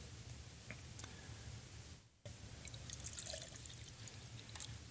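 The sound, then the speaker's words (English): Drinking water pours in a steady, splashy stream, briefly stopping for a moment midway before resuming. It is fairly soft, with scattered small clicks and no voices. “Here's some nice water. This is American water. You can drink it.”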